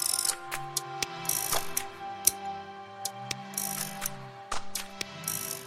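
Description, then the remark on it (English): A mechanical clock's gears tick steadily, sharp clicks landing about twice a second, with occasional brighter whirring bursts and a low, steady hum underneath. No one speaks. “And many of these clocks have survived and still provoke that awe to this day.”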